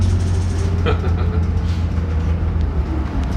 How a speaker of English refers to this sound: Stop requested. Please use rear exit. For your safety, watch your step when exiting the bus.